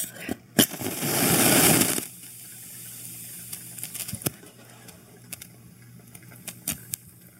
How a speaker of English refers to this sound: I wanna light a couple more matches though, because I really like that noise.